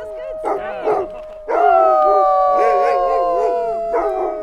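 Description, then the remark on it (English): Several huskies, from a mushers' kennel of about 40 racing and retired dogs, howl together in a loud chorus, long wavering cries overlapping and rising and falling, with short yips breaking in between. “She and Dan own about 40 huskies here.”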